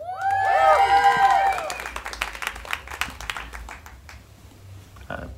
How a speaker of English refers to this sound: Sorry, holding for applause.